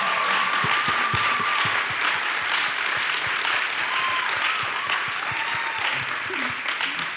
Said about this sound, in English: I just want to say thank you all for, again, your vulnerability, your honesty. Can we give our panelists a round of applause?